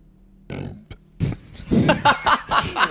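A loud burp after a fizzy drink rumbles out in a couple of gravelly bursts, followed by a longer throaty belch that breaks into breathy, snickering laughter.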